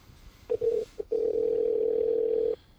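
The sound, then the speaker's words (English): A few short electronic phone beeps, as someone calls a saved number on their phone, are followed by a long, steady ringing tone lasting about a second and a half, heard clearly on its own with no talking. “To call her on my phone? Because I got her number saved.”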